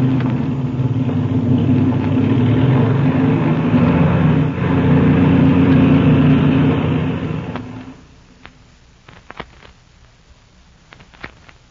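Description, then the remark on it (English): An airplane engine drones steadily with a deep, loud rumble for several seconds as it is warmed up while the plane taxis out, then cuts off abruptly, leaving near silence broken by a few faint clicks and taps. “I'm going to warm up the engine as we taxi out.”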